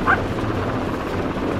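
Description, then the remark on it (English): A steady, loud mechanical drone with a deep low throb fills the whole stretch, like being inside a flying helicopter, with a brief high yelp near the start. “there's a helicopter place up ahead. Okay, set her down, but be ready to take off again.”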